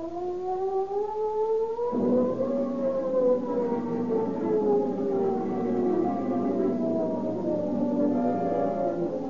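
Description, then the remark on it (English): The San Quentin prison escape siren wails steadily and loudly. Its tone rises sharply, then slides slowly downward in a long, mournful sweep, with no voices present. “The ominous wail of the San Quentin siren is the call to arms, which mobilizes Marin County law enforcement officers into a huge posse.”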